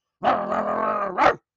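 A pit bull dog growls loudly for just over a second, a rough, throaty snarl that flares into a sharp bark-like burst at the end, with nothing else around it.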